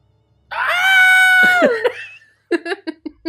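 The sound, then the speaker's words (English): In a dramatized scene, a character locked in a theater's projector room screams: a loud, high-pitched scream held for just over a second, piercing, then trailing off, followed by a string of short, choppy vocal bursts like giggles or gasps. “Josh runs over and grabs the bat and brings it up over his head when they hear Rashawn scream.”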